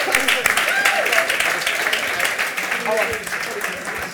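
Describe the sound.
A crowd in Basingstoke applauds steadily for about four seconds, a dense, even patter of many hands clapping at once, with a few voices calling out faintly beneath it.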